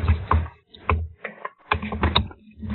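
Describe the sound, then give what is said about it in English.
Keyboard keys struck hard in quick, irregular bursts of sharp clacks, with a few brief pauses between flurries. The typing is fairly loud and heavy-handed, with no voices. “you're punching the keys, for God's sake.”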